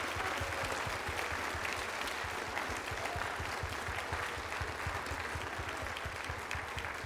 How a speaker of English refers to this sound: Praise God. Now give him some hand clap of praise and worship him right now.